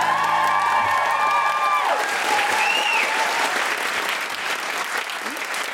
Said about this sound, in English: A huge round of applause for our wonderful guest, Zoe Lyons.